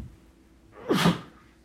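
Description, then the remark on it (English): A single sharp sneeze bursts out, rising from a quick intake into an explosive hiss, with no talking around it. “Bless you.”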